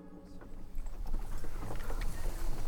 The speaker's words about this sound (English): It is late evening on October the 28th, 1769, in Boston. A horse-drawn cart bounces along the rutted streets, but it's carrying no ordinary cargo.